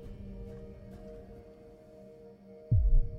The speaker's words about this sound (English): The pulse is almost a distant hum now, a gentle humming through your body.